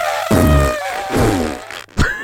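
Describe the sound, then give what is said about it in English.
A voice imitates an elephant's trumpet in three loud, buzzy blasts, each swelling with a rough low rumble under a wavering nasal tone. “Wait, do the elephant sound again.”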